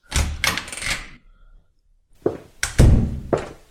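A door being opened and passed through: heavy wooden thunks and clattering knocks in two bursts of several hits each, separated by a brief quiet pause, with no talking.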